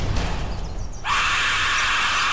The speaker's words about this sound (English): So it's a whistle shaped like a skull. When you blow on it, it sounds like a guy screaming.